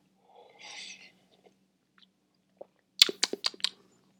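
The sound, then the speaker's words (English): A short, airy slurp of coffee from a cup, then a few faint mouth clicks and a quick cluster of sharp gulping sounds. Quiet, with no talking. “Got some coffee here. I'm going to take a sip and try to soothe my throat here.”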